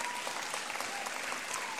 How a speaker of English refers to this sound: Come on, give up a hand clap of praise.